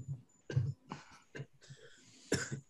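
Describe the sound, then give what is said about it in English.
Several harsh coughs in a loose sequence, with short bursts separated by breathy pauses and a final strong cough near the end. “Now I'm coughing.”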